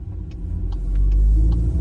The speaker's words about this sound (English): This Wrangler we're driving, the 392, is also a ridiculous and great muscle car. Probably closer to the chaotic undrivability and lunacy of the original muscle cars than today's Dodge Chargers and Challengers.